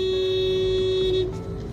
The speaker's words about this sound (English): So I got to sit on my horn and shit. Just to make people know the fuck time it is.